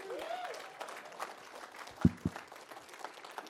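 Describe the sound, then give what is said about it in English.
An audience applauds the worship team with steady, dense clapping throughout, and a couple of sharper, louder claps or thumps stand out briefly partway through. “Hey, could we do me a favor and give our worship team like a big applause?”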